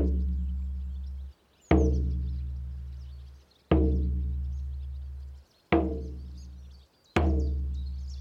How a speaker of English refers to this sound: If you hold the letter flap open, I'll hold the drum against the door and I'll bang it as loudly as I can.